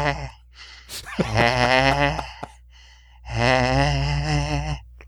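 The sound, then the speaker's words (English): A voice imitates the sleep apnea snoring of the character Neelix, with a sharp gasping intake followed by two long, strained, wavering groans separated by a brief pause, fairly loud. “You think he's got the sleep apnea?”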